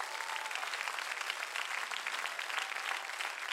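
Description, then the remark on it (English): A seated crowd claps again when asked, a steady, dense wash of many hands applauding at an even, fairly loud level throughout, with no voices standing out. “Let's try it again. Clap again.”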